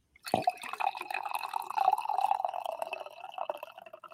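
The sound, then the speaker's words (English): Coffee pours into a cup in one steady stream, starting with a splash and gurgling on for several seconds before trailing off. No one speaks. “There it is. The coffee pour for the people here.”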